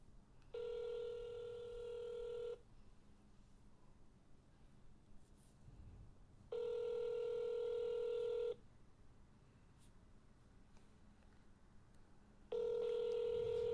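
signal or alarm, outgoing phone call ringing

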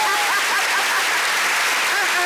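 crowd, applause

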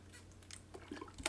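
human body sound, sipping water

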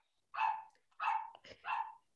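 animal, dog barking

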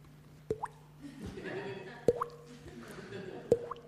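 household object, water dripping

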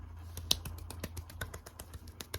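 human body sound, finger snapping

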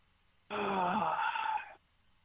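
human body sound, audible gasp

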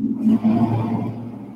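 vehicle, truck driving past

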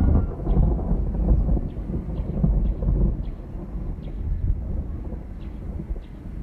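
nature, thunder rumbling

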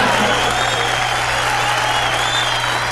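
crowd, enthusiastic audience applause

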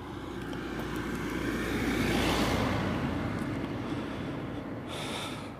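vehicle, car passing by outdoors

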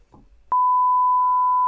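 sound effect, censor bleep tone

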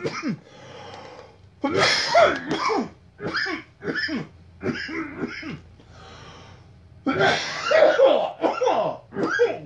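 human body sound, repeated coughing

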